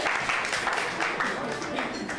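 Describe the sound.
A comedy show audience in Seattle applauds steadily for a couple of seconds, a dense wash of clapping at constant loudness with some voices mixed into the noise.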